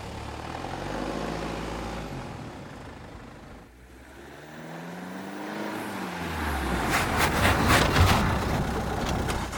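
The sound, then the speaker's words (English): An old '29 Ford car engine is started, rumbling low and steady, dips briefly, then revs up with rising harmonic tones and grows louder and rougher as the car shudders and sputters, with bursts of rattling, sputtering noise toward the end as it rumbles down a mountainside. “Alvin climbed into his 29 Ford and started the engine. The vehicle shuddered and sputtered before a spurt of wheels pushed forward and rumbled”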